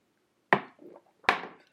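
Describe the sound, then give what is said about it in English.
Two sharp clinks of shot glasses of white Hennessy knocking together in a toast, about three quarters of a second apart, each a bright, hard tap with a short rattling decay and no voices. “Hand that just click the glass with us.”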